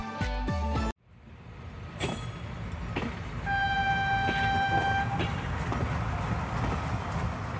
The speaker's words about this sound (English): Oof, that was the local train. I was late again and I was running as fast as I could towards it. It reached just in time as I plopped down on my C3A.